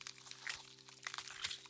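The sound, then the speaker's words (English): A dense, crackling crunch sound effect of a body morphing into a red-tailed hawk, with continuous crinkling and snapping bursts over a steady low hum, swelling in waves rather than a clear beat. “Savannah will start morphing as well.”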